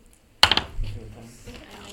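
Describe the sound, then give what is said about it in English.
Several dice clatter onto a table in a quick burst of three or four sharp clicks, followed by a brief low rumble as they settle, fairly loud. “I'll just throw the dice down this one.”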